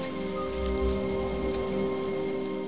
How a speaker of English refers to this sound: I wish the rain would stop just once. Can't rain all the time.